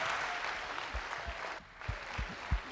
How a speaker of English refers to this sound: All right, Bridges, let's give a huge round of applause for our actors.